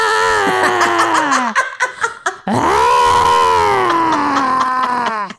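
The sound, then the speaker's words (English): A person imitates a throaty, strangled scream in two long, loud, wavering bursts, the first breaking into choppy gasps before the second rises and holds steady. “Throaty, strangly, kind of upsetting scream.”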